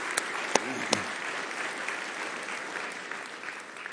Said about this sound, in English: In fact, let's give our missionaries a big round of applause just so they can hear from all of you here.